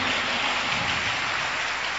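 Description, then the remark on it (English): A crowd claps hands for the Lord in a dense, steady wash of applause that sounds almost like heavy rain, loud and even for its whole length, with no voices. “Give a mighty clap to the Lord.”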